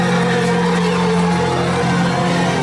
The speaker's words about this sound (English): And the crowd getting excited. There's Mr. Mandela, Mr. Nelson Mandela, a free man taking his first steps into a new South Africa.